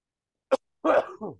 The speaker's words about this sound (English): Oh, man. Made me have a coughing fit. This Gordon Hayward talk.